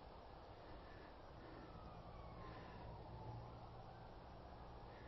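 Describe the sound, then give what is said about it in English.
A faint police or ambulance siren wails and slowly glides in pitch, nearly buried under a steady wash of outdoor background noise in a place with nothing but trees around. No one speaks. “Nothing but trees and a police siren perhaps an ambulance.”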